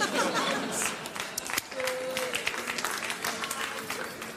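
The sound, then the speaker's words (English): A studio audience applauds steadily for several seconds, a dense, even wash of clapping with a few faint cheers or voices mixed in, fairly loud throughout. “I don't know what we're applauding, but okay.”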